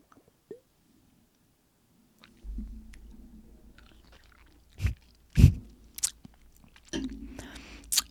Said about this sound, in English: Let me just take a sip. That was close. That almost tipped.